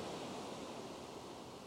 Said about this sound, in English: Just listen to the calming waves as you feel the warmth.